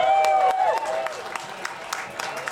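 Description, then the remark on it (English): A crowd at Boats and Bluegrass in Winona bursts into cheering and applause, with a sustained high whistle and shouting voices at first, then scattered sharp claps carrying on as the noise slowly thins out. “Can y'all make some noise for Boats and Bluegrass? Come on!”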